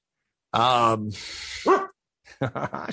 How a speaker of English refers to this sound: And because it needs maintenance, my dog's annoying me for food right now. I think I messed up. Stop it, dog.